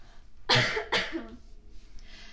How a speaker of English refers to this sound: I got a cough.